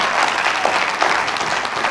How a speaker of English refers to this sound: Won't you give God a hand clap? Amen.